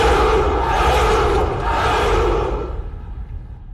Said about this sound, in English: Delighted by this reply, the followers of Romulus let out a great cheer.